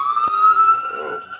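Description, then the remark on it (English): A steady siren wails from an emergency vehicle, its tone holding and slowly rising, fairly loud and continuous throughout, with faint background noise beneath. “Sirens going on. Wonder where they're going.”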